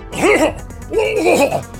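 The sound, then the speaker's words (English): Two loud, drawn-out bouts of heavy, voiced coughing by a coach, each a rough hacking burst with a straining, throaty tone, separated by a short pause. “And moments later, you hear … sort of like heavily coughing.”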